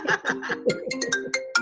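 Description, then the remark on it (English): A mobile phone ringtone plays a quick, bright melody of short chirping notes in a steady repeating pattern, fairly loud, with no talking over it. “Oh, God, my phone is going off. That's okay. That's all right. We still roll with it. I like that ringtone.”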